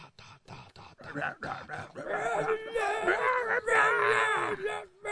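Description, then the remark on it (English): A few choppy vocal bursts lead into a long, loud, strained scream into the microphone, held for several seconds with a wavering pitch before cutting off. “I call this music when I scream into the microphone.”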